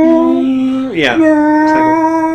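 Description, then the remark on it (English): A person imitates a Wookiee roar like Chewbacca's: one loud, drawn-out, howling growl that dips in pitch partway through, then rises and holds steady, with no talking around it. “Like I try my best, Wookiee.”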